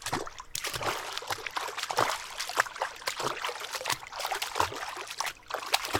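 Footsteps of a person walking into a lake, wading deeper through the water, each step a splashy slosh in an uneven, steady rhythm over about six seconds, with no voices.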